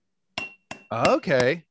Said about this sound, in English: Here, I've got... Knock on it. Knock on it. My alcohol-free beer.